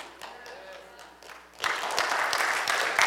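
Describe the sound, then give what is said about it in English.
An audience breaks into light, scattered clapping about halfway through, a dense patter of hand claps that starts softly and holds steady until the end, with no one speaking. “It's a subtle clapping, but some people are okay with it.”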